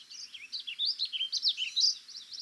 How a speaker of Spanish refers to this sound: Un vireo gorjeador canta desde alto en el dosel.